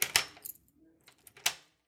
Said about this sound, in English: He then hears a key rattling in a door lock.